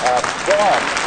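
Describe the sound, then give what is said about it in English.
A steady wash of applause from a crowd welcoming a rabbi at St. Mary's Episcopal Church in Steerage, Florida, dense and continuous, with a couple of rising whoops or cheers riding over the clapping. “Yes, please, applause.”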